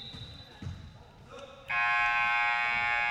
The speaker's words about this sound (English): So I'm starting to realize that the loud buzzing means that players are switching.